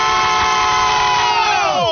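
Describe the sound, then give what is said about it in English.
A group of voices lets out one long, loud war cry for War Cry Wednesday after a countdown to three, a sustained mass yell that holds steady for nearly two seconds before the pitch drops sharply as it breaks off. “I'm going to count down to 3, and we'll do a War Cry for War Cry Wednesday.”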